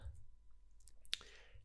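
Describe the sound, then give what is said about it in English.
A few quiet, irregular clicks of someone typing a Google search on a computer keyboard, with one sharper tap standing out among them, against a faint low hum and no talking. “Well, do you want me to hold the mic to the keyboard so everyone can listen to it more?”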